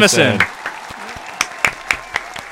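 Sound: applause sound effect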